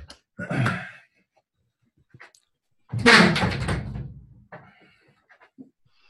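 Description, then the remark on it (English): A door is closed, with a short knock-like bang followed a couple of seconds later by a louder, longer thud and rattle as it shuts, then quiet with faint small noises. “I didn't close my door or put the blanket up.”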